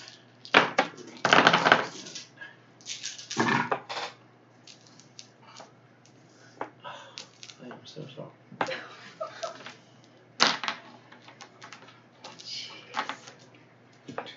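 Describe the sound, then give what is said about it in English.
Twelve dice, rolled for an attack in a game, clatter and tumble across a hard surface, with bursts of rattling clicks followed by scattered smaller knocks as they settle. “You're going to make a 12 dice attack.”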